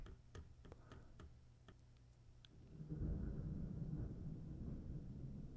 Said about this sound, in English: Got some thunder here. I don't know if you could hear that or not, but that was a little thunder. A little morning thunderstorm.